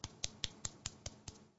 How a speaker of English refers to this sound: You know, no, a little golf clap